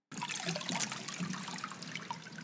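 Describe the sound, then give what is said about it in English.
Water streams and trickles steadily for a couple of seconds, a continuous splashing dribble of water running off a person being raised from baptismal immersion, with no voices. “See, here is water.”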